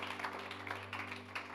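An audience applauds, a steady wash of many hands clapping at once, fairly soft and even throughout, with a low electrical hum underneath and no voices.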